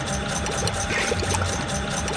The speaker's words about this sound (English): I've got … blew through a straw into a pan of water to create the bubbling sound.